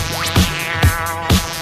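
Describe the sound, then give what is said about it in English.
A steady buzzing drone with a rich harmonic hum from a bee inside a car, rising and dipping in pitch, with three soft low bumps along the way and no talking. “Well, it sounds like a bee. Is there a bee in this car?”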